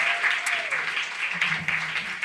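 A crowd applauds with steady, dense clapping that holds its level throughout, with a faint tonal hum and some murmuring underneath.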